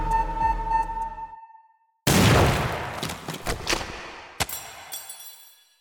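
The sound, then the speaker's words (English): A bomb's steady electronic beeping tone cuts off, and after a brief silence the bomb, stuck in a body's chest, goes off in a loud, sudden blast, followed by crackling debris and a sharp secondary crack as the roar fades. “And instead, there is an explosion as the bomb inside your body goes off.”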